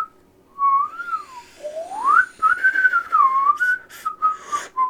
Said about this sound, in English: Because the way that I did not know how to whistle breathing out. I learned how to whistle breathing in.